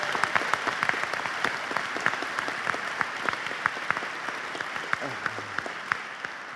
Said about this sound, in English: And our third group is an outstanding doctoral graduate student who's getting a PhD today. Let's applaud all three groups.